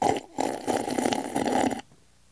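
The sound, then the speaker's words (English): Someone wearing a mask slurps coffee: a short airy suck, a brief pause, then a longer, louder, noisy slurp lasting over a second before it cuts off into quiet. No talking. “Might be my mask, but I think it's absorbing the sound waves of my slurpage.”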